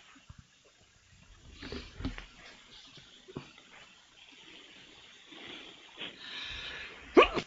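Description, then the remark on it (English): A sharp sneeze bursts out near the end, after several seconds of quiet, breathy snuffling and faint rustling. “I sneeze.”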